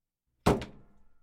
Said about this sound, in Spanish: Y entró y cerró la puerta.